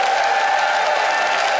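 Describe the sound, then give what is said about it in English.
An audience votes by applause, a dense, even wash of clapping with some cheering mixed in, holding at a constant loud level for the whole short stretch with no talking. “Audience, it is time to vote by applause.”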